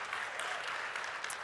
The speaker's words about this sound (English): Came in, wonderful poll workers that were working there, and I had to show an ID. What a concept, right? I know, like let's applaud that, right? Like, that's a good thing.